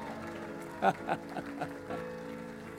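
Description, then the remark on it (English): A handful of scattered hand claps from a church audience giving Jesus a hand clap, five or so uneven sharp slaps rising above a steady sustained musical tone, with no voices. “Now you can give Jesus a big hand clap.”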